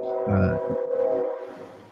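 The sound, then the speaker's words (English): A passing train's horn holds a steady, sustained blare over a low rumbling of rail traffic, with no voices. “Somebody conducting a train over there.”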